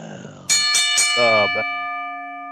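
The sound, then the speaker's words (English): A bell is struck loudly a few times in quick succession, then its bright metallic tone rings on and slowly fades. Voices briefly shout together over the first strikes. “Ring the bell.”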